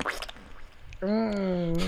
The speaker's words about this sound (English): Okay, so if I put the moist fart, ooh. If I play the moist fart right before the shart, oof, listen.